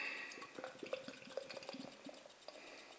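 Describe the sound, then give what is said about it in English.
Sunshine, a 5.5% double dry hopped IPA beer, pours into a glass and foams up, a steady fizzing trickle dotted with small splashes and drips, fairly quiet with no voices. “Ooh, that foams out a bit.”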